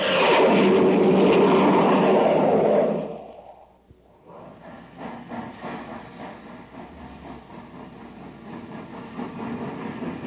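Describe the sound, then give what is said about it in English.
The Terra Express train labors to gain speed on ordinary fuel: a loud, broad rumble fades out, then the engine noise returns as a steady, rough chugging roar that never quite picks up. “That was the Terra Express train trying to get up speed on ordinary fuel.”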